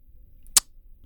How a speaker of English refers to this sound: Yeah, I like this board that I always put my Bevs on when we record. And I just knock all the shit off. Yeah. All this glass, fuck out of here.